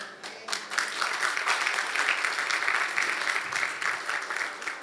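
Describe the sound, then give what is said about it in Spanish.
An audience breaks into steady applause, a dense wash of many hands clapping at once that holds at an even, fairly loud level throughout before tapering slightly at the end. “No aplauda.”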